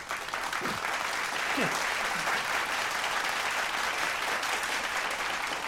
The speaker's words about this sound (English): So, can I applaud the man now? Go ahead.